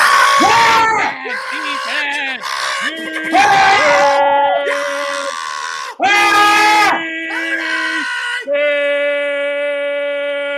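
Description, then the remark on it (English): A loud football crowd yelling and screaming together while their team is on defense, sustained voices rising and falling in waves of shouted cheers, intense throughout with no quiet gaps. “We're on defense, loud AF.”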